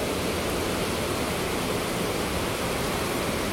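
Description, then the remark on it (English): Heavy rain pours down outside a window in a steady, dense hiss, a constant wash of sound with no pauses or changes in intensity and no voices. “I'm so happy I'm able to record in the rain.”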